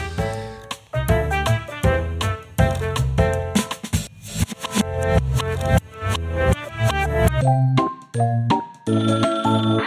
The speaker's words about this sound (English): I like the idea of the music just fading now while you list. Just list all the terrible things.